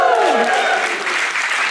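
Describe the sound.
A crowd breaks into sustained cheering and clapping for Pride on the first Sunday of Pride month, loud, with whoops and shouting voices over steady applause for a couple of seconds.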